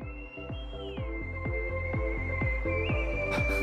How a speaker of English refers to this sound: So we got a lady who's whistling on a rock in the desert.